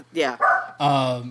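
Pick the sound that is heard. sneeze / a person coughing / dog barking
dog barking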